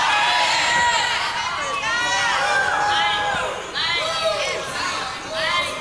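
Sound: audience shouting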